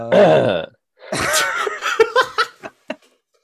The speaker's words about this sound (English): this death rattle cough that he just hit. Yes, I currently do have COVID.